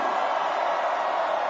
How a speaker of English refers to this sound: So on the count of three, I want everybody to raise their hands and scream. One, two, three, scream! One, two, three, scream!